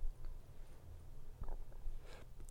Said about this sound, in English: See? Burping.